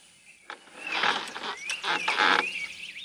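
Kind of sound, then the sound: bird, bird calling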